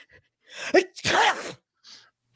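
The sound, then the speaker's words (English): A person imitates a woman's uncovered wet, juicy sneeze: a quick sharp inhale, then a loud, spluttering burst of breathy spray that trails off, with a faint hiss after. “And it wasn't just a like keep your mouth closed kind of sneeze. It wasn't that. It was this.”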